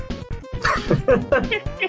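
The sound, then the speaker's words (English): A voice imitates a dog, letting out a quick, loud series of yipping barks that rise into a short wavering howl. “The void is howling. Not that kind of howling.”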